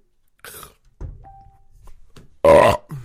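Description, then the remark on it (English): A single loud burp erupts near the end, raspy and brief, following a few softer throaty gurgles and grunts with no talking. “You gagged from drinking vodka and I burped.”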